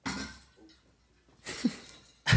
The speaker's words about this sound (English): That sounded like that. He knocked over his water bottle, but it sounded like glass.